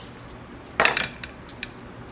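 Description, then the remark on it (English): A brief clatter of dice being rolled and tumbling onto a surface, a quick burst of rattling clicks lasting about a quarter second, followed by a couple of faint settling ticks. “That's a lot of blank bad dice.”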